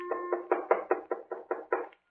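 knock on a door

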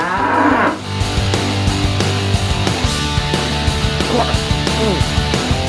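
bull mooing

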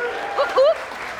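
audience applause

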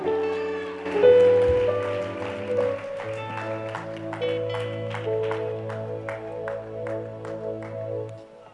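audience clapping in welcome

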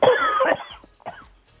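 coughing

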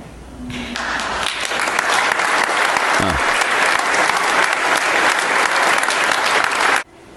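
tepid audience applause

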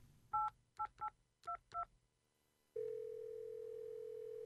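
telephone keypad dialing tones

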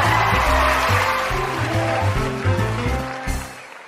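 audience applause sound effect

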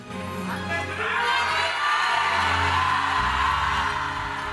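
church audience shouting

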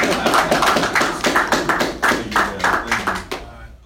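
clapping

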